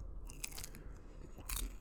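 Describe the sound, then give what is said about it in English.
Chewing and munching on food, with several crunchy bites in an irregular rhythm, quiet, no talking. “Just fucking munching. I'm hungry.”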